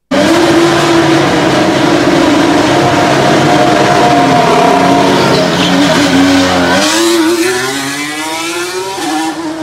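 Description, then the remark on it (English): The Renault engine of Fernando Alonso's Alpine Formula One car screams loudly and continuously as he comes out onto the track, its high whining pitch holding steady before shifting through gear changes, with strong harmonic bands throughout and no talking. “Beautiful sounding Renault engine.”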